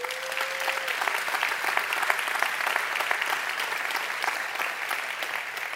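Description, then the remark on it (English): An audience at a church sermon applauds steadily, a dense wash of many hands clapping at once that holds at an even, moderately loud level throughout, with a brief tonal note near the start. “Come on, you can clap for that. Let's give it up.”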